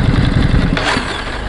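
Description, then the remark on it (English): A motorcycle engine idles at a Marks & Spencer petrol station with a loud, steady low rumble and quick rhythmic pulsing, easing slightly in strength toward the end but still running. “I've just pulled over at Marks & Spencer's petrol station, and just while I was looking at the TFT screen then, I still had the engine on, and just switched it off, and some guy at the cash machine goes, "Oi, that's so noisy."”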